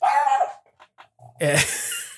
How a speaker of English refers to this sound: Your dog has something to say about that one.